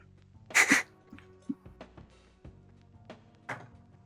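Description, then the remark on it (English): A twenty-sided die is tossed into a tray with a sharp clatter, then tumbles and bounces in a series of scattered, fading clicks before settling on an 8. Fairly quiet, with no talking. “I'm gonna roll in this tape.”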